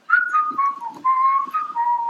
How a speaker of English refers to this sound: I can whistle good.